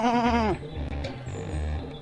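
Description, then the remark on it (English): A single loud, wavering sheep bleat with a quivering vibrato lasts about half a second, from a video game sheep standing in front of a tropical resort being clicked repeatedly, followed by lower rumbling game noise and faint clatter. “There's like, you go to a tropical resort, and there's like a sheep just hanging out in front, and if you go up and click on him a bunch, this happens.”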